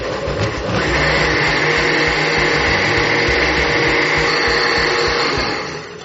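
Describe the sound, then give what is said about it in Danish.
A kitchen blender whirs loudly and steadily for several seconds, blending a liquid set with agar and coloured black like caviar, a dense motor roar with a high whine, spinning up at the start and easing off slightly at the end. “Og nu vil jeg starte blenderen.”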